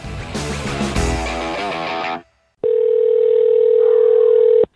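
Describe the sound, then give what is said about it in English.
A short burst of music cuts off, and after a brief silence a loud, steady telephone dial tone hums for about two seconds, unbroken. “I know how to pick up a phone.”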